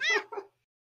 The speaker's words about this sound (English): wait, is that actually a cat? Yeah, that's real. Oh, shit. It's my real cat, dude. I thought that was a soundboard.